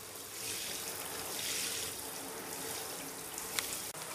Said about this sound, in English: I remember sitting there in the bath, just letting the water run over my legs for ages.